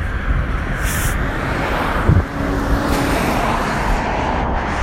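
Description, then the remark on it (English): Cars whoosh past on a road in a steady, continuous wash of traffic noise, with a slightly louder pass around the middle and some wind rumble underneath. No one speaks. “You don't normally hear people around here. Just whooshing of cars.”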